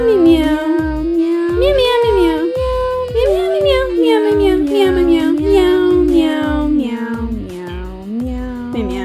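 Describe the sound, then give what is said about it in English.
A human voice imitating a cat, repeating drawn-out meows in a steady sequence, loud, over a rhythmic musical backing. “Meow, meow, meow.”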